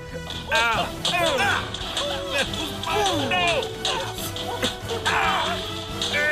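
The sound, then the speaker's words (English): Rapid, sharp slaps land again and again in a frantic flurry, mixed with strained yelps and grunts from two brothers scuffling and slapping each other. “Just watching you two struggle to slap each other makes me want to self-destruct.”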